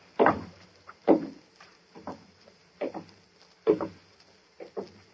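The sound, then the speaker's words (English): A door opening, heard as a series of dull wooden thumps and clunks repeating at a fairly steady pace, each with a short rattling edge, against a quiet background with no talking. “And, yes, listen. It's the door.”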